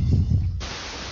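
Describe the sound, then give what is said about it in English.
Muffled low rumbling gives way to a sudden, steady wash of hissing microphone static that fills the rest of the short clip at a moderate, constant level, with no one speaking. “your mic's staticking at us.”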